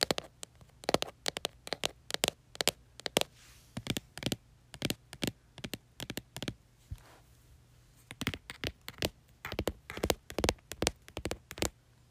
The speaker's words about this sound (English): Okay guys, so the next trigger I have for you today is some keyboard tapping. And you can kind of, I'm logging into my computer right now, but I'm on my computer and I'm gonna make some triggering sounds on my MacBook, so let's do it.